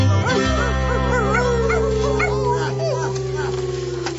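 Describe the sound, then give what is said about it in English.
A dog lets out a rapid run of high-pitched yips and short whining barks, loud, over a steady low hum that continues underneath. “Everybody, don't pet the dog.”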